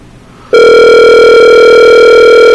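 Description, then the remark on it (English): After a half-second of quiet, a loud, steady telephone tone starts and holds unbroken to the end, the ring heard while an outgoing Skype call connects. No one speaks. “Calling Matt Weinstein.”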